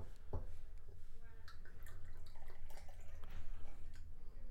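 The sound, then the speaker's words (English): Buchanan's whisky trickles and splashes into a shot glass for several seconds, starting with a brief clink of glass, over a steady low hum and faint murmuring voices. “Let's take one more shot.”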